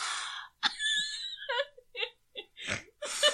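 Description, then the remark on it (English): A high, wavering whimper of stifled laughter breaks into a few short breathy bursts, then a rough, noisy snort, with another harsh exhale right after. No words are spoken. “That was followed by a snort.”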